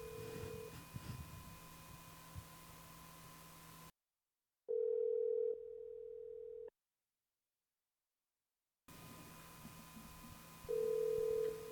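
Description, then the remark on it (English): The ringback tone of an outgoing prank phone call, a steady electronic hum heard twice with a long silent gap between, fairly loud and clear over faint line noise, with no talking. “Let's get this joke on the phone.”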